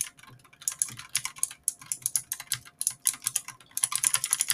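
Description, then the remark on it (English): Rapid, uneven clatter of computer keyboard keys being spammed at random, a dense stream of sharp clicks with brief pauses, no voices. “Yeah, I don't know why I feel like just spamming random keys, but I did.”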